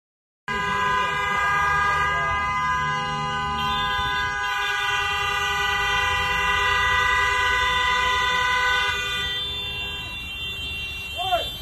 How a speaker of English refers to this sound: But you're going to hear honking. And that's this guy now at the, you know, the spot where you order.